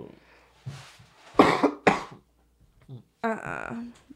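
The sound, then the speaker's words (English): Two loud coughs in quick succession, each a sharp burst, followed by a softer throat sound and a brief voiced noise; no clear speech. “Both of them are coughing. But that cough didn't sound bad.”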